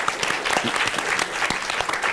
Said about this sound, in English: So I think they're not here, but we should applaud them nonetheless.